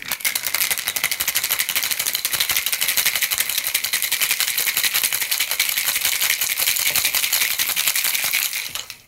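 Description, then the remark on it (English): A cocktail shaker filled with ice is shaken hard for about nine seconds while mixing a White Lion cocktail, ice clattering in a fast, steady rhythm of bright, sharp rattles at an even loudness, with no voices, before it stops abruptly. “Ice. Shake. There we go. Give it a shake.”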